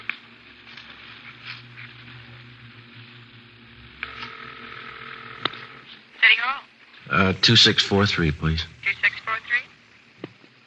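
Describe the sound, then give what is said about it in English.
A telephone handset is lifted in a kitchen and a few sharp clicks of dialing follow over a steady low hum, then a voice speaks briefly near the end. “I want to call in anyway. Do they have a phone here?”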